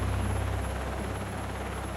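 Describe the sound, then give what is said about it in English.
A Coast Guard helicopter descends to a helipad, blowing up a storm of dust; its rotor blades chop in a fast, low thudding rhythm beneath a loud, continuous roar of engine and rushing air, with no voices. “The Coast Guard helicopter descends at the helipad, blowing up a storm of dust.”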